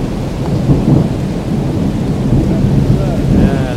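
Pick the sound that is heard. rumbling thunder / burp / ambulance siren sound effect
rumbling thunder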